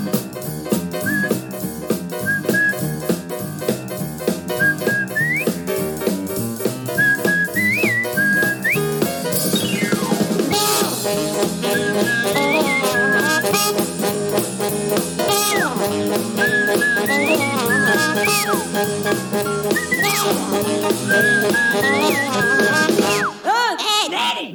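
A bright, bouncy whistled melody rides over an upbeat instrumental band, short chirpy phrases repeating throughout a lively, full-volume theme tune with no talking: the whistling intro of the cartoon Ed, Edd n Eddy.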